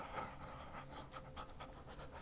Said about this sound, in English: the shaking and vibrating is you have 2 feet planted on the ground, bend your knees slightly, and you're just bouncing up and down your whole body, opening your mouth, breathing in, breathing out. Shaking your body.